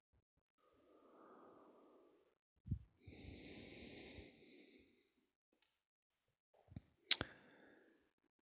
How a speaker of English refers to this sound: Yeah, so there's a change physically now. Change in the way I'm breathing.